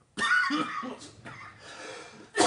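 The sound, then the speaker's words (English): A harsh cough bursts out and trails into rough, wheezy throat noise, followed by a second sharp cough at the end. No one speaks. “Cough break.”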